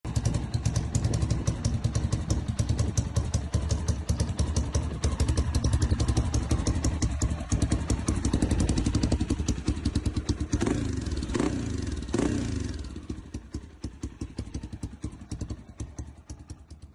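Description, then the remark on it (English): A single-cylinder motorcycle engine, already running, idles with a rapid, loping thump, revs up sharply a couple of times around the middle, then settles back to a steady idle. “So, first thoughts, single cylinder. It is.”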